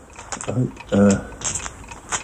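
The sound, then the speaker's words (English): Dice rattle and clatter in quick, uneven clicks as they are shuffled, shaken and rolled, with a brief murmuring voice sounding partway through. “All right, I'll roll them properly. We'll need to shuffle them up.”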